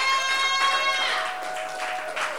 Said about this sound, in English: Why don't you give Jesus a mighty, mighty, mighty clap?